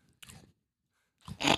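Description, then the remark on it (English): Wet chewing of candy in two short bursts separated by a brief pause, the second louder and crunchier, with no talking. “It tastes like chewing a sweaty gym sock.”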